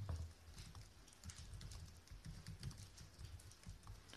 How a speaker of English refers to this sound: As you can hear, as Madi said, it's raining.